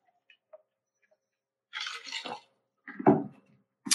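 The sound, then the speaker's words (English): A few faint clicks give way to a wet, hissy slurp of a drink, then another short gulping sip and a brief final slurp, with no talking. “I'm gonna take a sip of my drink.”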